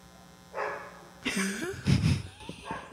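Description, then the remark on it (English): A dog barks loudly several times in a quick, uneven burst, sharp yelping barks standing out against a quiet background. “Why is that dog so loud?”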